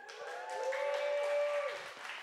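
An audience applauds in a steady wash of clapping that fills the whole stretch, with a faint sustained tone humming underneath.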